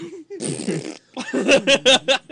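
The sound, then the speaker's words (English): A person blows a loud, wet raspberry imitating a fart, a sputtering burst followed by a few short, bubbly puffs like air escaping a deflating balloon. “It makes a funny farting sound.”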